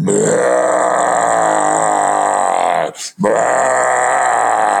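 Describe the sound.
A man's voice imitates two long, deep, rasping roars, loud and gravelly, 'Darth Vader roars' heard right over the top of a little dome tent; the first stretches nearly three seconds before a brief breath-like pause and a second roar.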